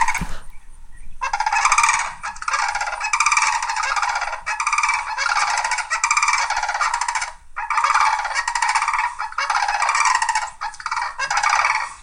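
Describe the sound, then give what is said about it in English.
A loud, trumpeting bird call repeats in long rattling bursts, each with a resonant, quavering tremolo, nearly continuous for about ten seconds with only brief gaps. No one speaks. “Here's what this bird sounds like.”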